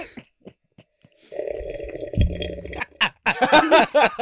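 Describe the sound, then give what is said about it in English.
Someone noisily slurps the juice from a jar of hot dogs, a gurgling sip lasting over a second with a throaty, burp-like rumble, then voices break into talk and laughter. “Sipping the wiener juice over there.”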